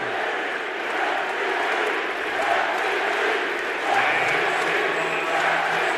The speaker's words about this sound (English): Crowd chanting MVP while every Blazer player eggs them on for more, except for Lillard.